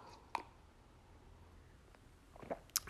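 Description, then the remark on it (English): A few soft, wet sips of coffee and a swallow: one short slurp early on, then a quiet pause, then two more quick sips near the end, with no talking. “Let me take a sip of coffee.”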